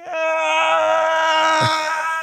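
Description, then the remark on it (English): The cartoon villain Mumra, returning to the Black Pyramid, lets out a blood-curdling, painful scream: one loud, sustained, strained cry held steady at a high pitch for over two seconds, harsh and buzzing, with no talking. “The last thing we do is we go back over to the Black Pyramid, where Mumra returns with another blood-curdling, painful scream.”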